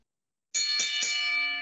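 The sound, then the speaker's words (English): A bright metallic bell is struck three times in quick succession after a moment of silence, then its loud ringing tone hangs and slowly fades. No one speaks. “ring the bell.”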